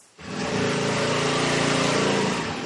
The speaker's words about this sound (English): It sounds like a lawnmower. It's a little scooter bike. I rented one yesterday.